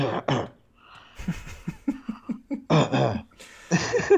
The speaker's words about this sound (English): You need some cough medicine.